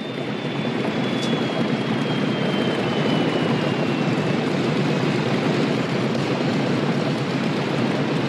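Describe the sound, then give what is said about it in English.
A loud, steady jet engine roar with a thin high whine that slowly drifts lower, like an airplane taxiing in. No one speaks. “No, that's not your plane. Yours is this one rolling in.”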